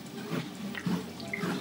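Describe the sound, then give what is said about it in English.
Water runs and splashes steadily for a moment as it is poured for a drink, with faint gurgling and no voices. “Let's just have some water first.”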